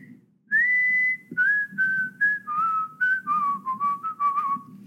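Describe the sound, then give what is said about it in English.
A bright, clear whistled melody plays a catchy riff from a pop song, starting with long held notes and then breaking into quicker bouncing phrases, over a low steady background rumble. “I heard the whistling riff.”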